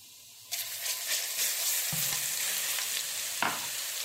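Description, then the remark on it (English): Cardamom seeds and garlic paste sizzle loudly in hot oil, a steady crackling hiss that starts abruptly and continues, with a couple of brief scraping stirs partway through. “Just open them up and you'll see the seeds coming out and just let them sizzle in the oil.”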